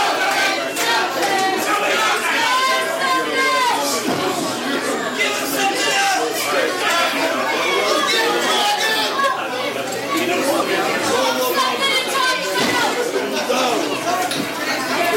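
A loud, steady roar of a large live crowd at a wrestling match, dense overlapping voices, shouts and cheers swelling and dipping continuously with no single voice standing out, the crowd backing one of the wrestlers.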